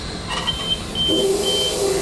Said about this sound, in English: That's nothing to worry about, that beeping sound.